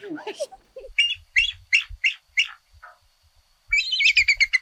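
A bald eagle's thin, high chittering call: a series of quick piping notes, a short pause, then a faster burst of squealing twitters, clear with no talking.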